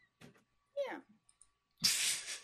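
A cat gives a short meow with a quick rising-and-falling pitch, preceded by a faint rustle and followed by a loud, harsh hissing burst. No one speaks.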